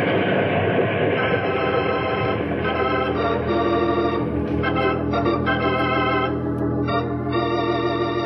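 A steam train runs along the tracks, a loud, steady rumble with a layered mechanical drone and faint rattling that continues without a break.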